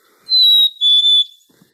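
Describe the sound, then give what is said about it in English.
A black-capped chickadee's cheeseburger song: clear, pure high whistled notes, a longer steady first note followed by a slightly lower, slightly broken second one, loud and alone with no talking. “Well, that was indeed a black-capped chickadee, and they have a couple different songs. The first one, we sometimes call it the cheeseburger song.”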